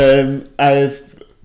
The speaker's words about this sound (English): There's a lot of burping going on here. I'll edit this out. I'll try, but... If it's integral to the conversation. I'm burping.